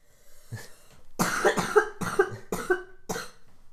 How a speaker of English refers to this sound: I try not to be coughing as much next time. Yeah. Yeah, you did you really powered through. I won't tell you how many times we are going to have to cut out her coughs.